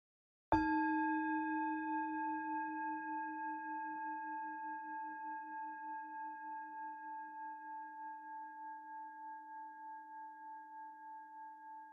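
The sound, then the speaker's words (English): A single meditation bell is struck once at the start of a 15-minute meditation, ringing with a clear, steady tone and a gentle pulsing shimmer as it slowly fades over about ten seconds, with no voices present. “I'll ring the bell. And just bring all of your attention to the bell.”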